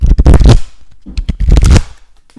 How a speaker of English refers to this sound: Well, let's pull the tarot cards, see what the fates have in order. Let's see what they said. Ooh, sorry, I'm talking over your card shuffle ASMR.